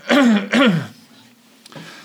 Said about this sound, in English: sorry, don't know what's going on with my, clearing my throat here.